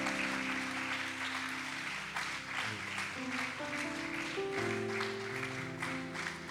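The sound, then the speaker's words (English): A crowd claps steadily and continuously in praise for several seconds, a dense, loud wash of hands over sustained organ-like musical tones, with a few voices faintly mixed in. “hand clap of praise.”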